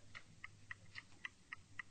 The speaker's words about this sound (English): Quiet a moment while I listen for a clock mechanism. Yes. Damn it all, it has got something like that. There's a definite tick coming from the fuse.